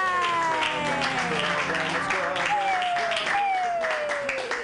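An audience at a comedy show claps and cheers steadily for several seconds for a comedian, a dense, loud wash of applause with a tune playing over it.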